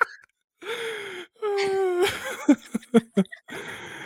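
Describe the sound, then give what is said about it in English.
A strained, drawn-out gasping wheeze gives way to a quick run of four or five sharp, harsh coughs, then a final rough breath, like someone caught in a coughing fit. “Oh no, I sent you into a coughing fit.”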